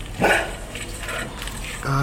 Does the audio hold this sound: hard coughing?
no